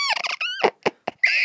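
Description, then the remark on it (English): A voice imitates a dolphin's laughing squeaks: a rapid run of high, chattering chirps, then a few short separate squeaks, ending in a sustained shrill squeal, fairly loud. “I feel like dolphins laugh. And it sounds a little bit like this.”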